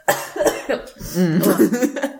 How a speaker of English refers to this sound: Well, I guess stop laughing when we cough.